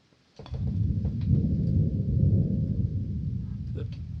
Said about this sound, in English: That's the reason. That thunder means a storm's brewing. That's why it's so quiet. Guess it'll break before nightfall.